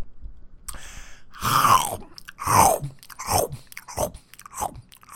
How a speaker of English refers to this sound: It just sounds like you're eating. You don't think it sounds crunchy? I mean, I guess it just sounds like you're eating a lot of food. I guess it's a little crunchy.